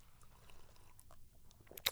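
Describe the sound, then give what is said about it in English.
Quiet sipping of Hennessy cognac: soft slurps and small wet mouth clicks scattered over two seconds, ending in a brief, louder breathy burst. No one speaks. “Pause for Hennessy. Tell you. I'm going to take a sip too.”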